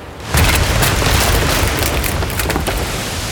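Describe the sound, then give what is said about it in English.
A massive crash as a whale lands on top of a schooner, with a deep booming impact, splintering cracks of the mast and a roaring rush as the sail drops into the water, staying loud for several seconds. “Landed on top of the schooner, cracking the mast and dropping the sail into the water.”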